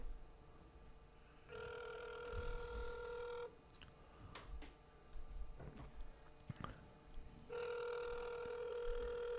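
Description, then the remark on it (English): An outgoing call to someone in Utah on a Sunday rings on a phone line: two steady electronic ring tones, each about two seconds long, separated by a long pause with faint clicks and rustling, and no one talking. “He probably won't answer the phone.”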